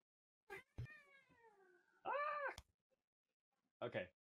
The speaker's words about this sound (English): Jackal's cat went and said hello to us